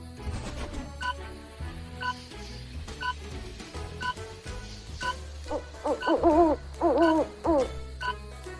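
An owl hoots repeatedly, the calls growing louder and more wavering toward the end, over a low steady background hum, with no voices.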